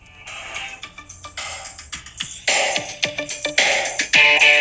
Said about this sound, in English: Yep. That is a great snare sound. Awesome. Yeah, that's mainly the hiss from the blaster you're hearing.